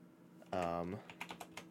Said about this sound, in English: Here, you get to hear my mechanical keyboard. Here's some ASMR typing.